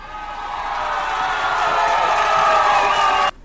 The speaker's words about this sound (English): Cheering.